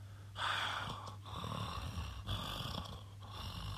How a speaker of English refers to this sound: And was relieved to hear the sound of Johnny's breathing as he got close.